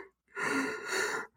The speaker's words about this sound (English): Half yawning. This episode is going to be you yawning. I know, dude. I don't know why I'm so tired.